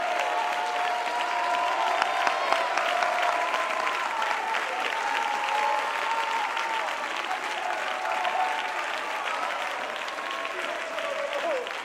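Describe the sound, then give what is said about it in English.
An audience claps their hands unto the Lord after a prayer, steadily and loudly for about twelve seconds, a dense, unbroken patter of many hands, with sustained voices calling out and singing tones underneath. “And if you really believe that prayer, I want you to clap your hands unto the Lord.”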